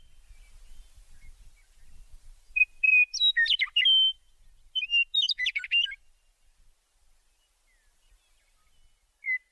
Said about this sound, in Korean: 새소리 들으니까 햇빛 쐬면서 숲길을 걷고 싶어졌어요.